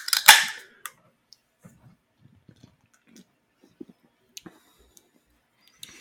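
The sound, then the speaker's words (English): A beverage can, a collaboration drink that came free with a bottle of 40 Creek Tap Room, cracks open with a sharp, loud pop and a short fizzing hiss, followed by a few faint, scattered clicks and soft handling noises. No one speaks. “But yeah, I got the can for free with a bottle of 40 Creek Tap Room because apparently they like did a collaboration.”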